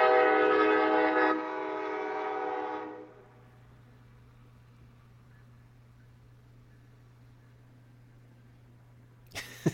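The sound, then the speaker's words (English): A loud train horn blares for about three seconds, one long sustained note that steps down partway, then fades into a steady low rumble of the passing train with a sharp clunk at the end. “Get some reliable internet and get away from this damn train.”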